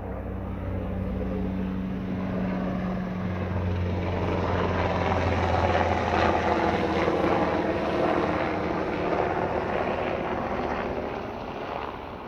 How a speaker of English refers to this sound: I was going to say we're on the news, but I think that's like a military helicopter. Okay. Yeah. Action News 5 or we're being bombed.